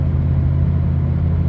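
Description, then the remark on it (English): A car engine runs with a steady, loud low rumble and humming drone that holds even throughout, with no clear rise in revs and no voices. “Hear the engine in the background?”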